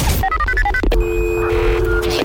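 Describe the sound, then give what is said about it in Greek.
A quick run of telephone keypad tones, about a dozen short beeps in a rapid irregular rhythm, followed by a steady ringing tone, all fairly loud, as a listener's mother is being called. “Έλα παιδιά, καλούμε τη μαμά του Ιωάννη την Παρασκευή.”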